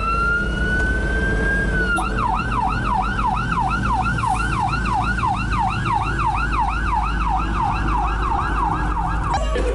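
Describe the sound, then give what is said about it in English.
The siren of a big Cork Airport fire truck, riding in a cavalcade through Cork city, sounds loud, opening with a long rising wail before switching to a fast, steady warbling yelp that continues to the end over a low engine and road rumble. “He was in the back of a big Cork Airport fire truck, and they went the long way from Nemo Rangers all the way through the city and down to Páirc Uí Chaoimh.”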